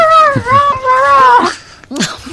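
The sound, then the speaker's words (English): A person imitates a dog, first with a drawn-out whiny, wavering tone, then two short, sharp bark-like yelps. “Bark. Bark like a dog, bitch.”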